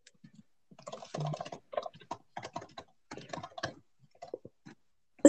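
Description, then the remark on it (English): Rapid, forceful typing on a computer keyboard, a dense run of sharp clacking keystrokes in uneven bursts with brief pauses, ending in one louder hard key strike. “are you violently typing?”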